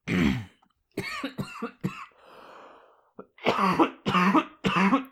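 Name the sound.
cough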